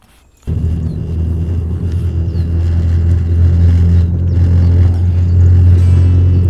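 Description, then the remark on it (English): A spaceship's engines roar to life abruptly after a brief silence as the ship takes off into the air, settling into a loud, deep, continuous rumble that swells slightly as it goes on, with no voices. “Right, let's get in the fucking air and let's do it.”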